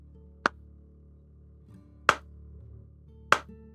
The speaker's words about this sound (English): But then the music of … stops, and the record scratches on the needle, and you hear very slow claps.